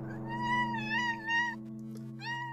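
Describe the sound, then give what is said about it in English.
A cat named Matilda meows in a few drawn-out, wavering calls that rise and fall in pitch, with a short pause before a final meow, over a steady low hum. “Sorry, my kitty cat Matilda here is really enjoying this story, and not a very helpful accomplice as a narrator, but she will occasionally intrude in the course of these memoirs.”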